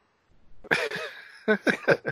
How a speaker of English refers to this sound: We need to get you a cough button.